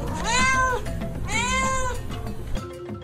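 A cat meows twice in close succession, each call drawn out and rising then falling in pitch, loud, with only faint background noise and no talking.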